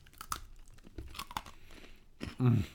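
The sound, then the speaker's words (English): Crisp crunching of a chocolate and vanilla meringue cookie, crunchy and dry throughout, being bitten and chewed, a few brittle cracks followed by a louder, denser burst near the end. “They're really crunchy. They're crunchy on the outside.”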